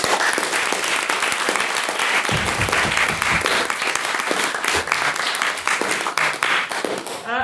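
A debate audience bursts into sustained applause for a speaker, dense overlapping clapping at steady loudness for several seconds, with no voices standing out.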